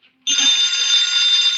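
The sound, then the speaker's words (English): A telephone bell rings loudly and continuously, a harsh, high, rattling tone that starts after a brief moment of quiet and holds steady to the end, with no voices. “Answer the phone.”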